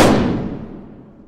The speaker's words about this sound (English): It was then that a sniper's bullet hit Sedgwick under his left eye. Chief of Staff Martin T. McMahon described the sound of the gunfire as, quote, a shrill whistle closing with a dull, heavy stroke.